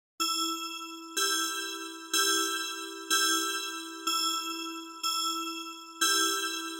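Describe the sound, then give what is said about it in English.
Seven clear, resonant bell strikes ring out one after another at a steady pace, each bright tone sustaining and slowly fading before the next, from a set of bells, the ones on the left smaller than those on the right. Loud, with no talking. “You can also see that the bells on the left-hand side appear to be smaller than the bells on the right-hand side.”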